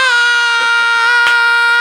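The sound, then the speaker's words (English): A person lets out one loud, sustained scream at a steady high pitch, held for about two seconds with a brief crackle near the end, and no talking alongside it. “And then the screaming, the podcast screaming.”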